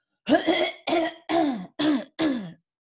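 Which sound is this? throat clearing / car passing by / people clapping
throat clearing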